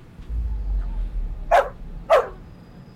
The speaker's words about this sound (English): That damn damn dog. Like, oh, hell no. No. That dog sees evil already.